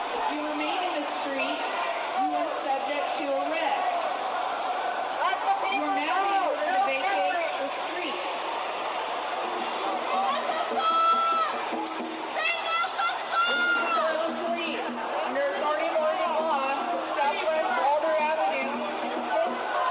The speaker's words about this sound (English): Okay, so first of all, you can hear it's an unruly mob, you know, and everyone's yelling, and there's police horses, and there's SWAT, and there's cops lying in the street, and I'm right at the edge of it.